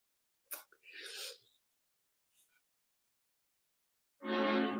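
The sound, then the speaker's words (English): A short sharp burst and a breathy rush come first, then after a pause a loud, rich train horn blast outside, with stacked harmonic tones, begins and holds steady until the end. “Sounds like a train just honked outside.”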